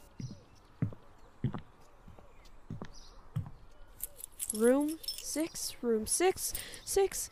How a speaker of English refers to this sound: She nervously fumbles with the room keys.